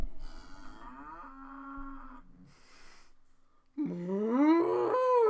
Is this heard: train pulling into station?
no